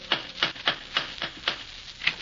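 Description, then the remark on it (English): A series of about seven sharp, hard knocks from an old-fashioned door knocker at a house, struck at 8 o'clock after going up creaky steps across the porch, at a steady, moderate pace with short gaps between each rap. No one speaks. “It was just 8 o'clock as I went up the creaky steps across the porch and knocked with the old-fashioned knocker.”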